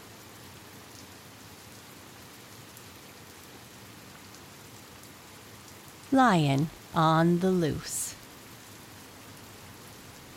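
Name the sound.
steady rain falling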